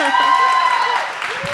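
An audience applauds a guest coming on stage, in a dense, steady wash of clapping that stays loud throughout and eases slightly near the end, with a thin sustained tone running underneath.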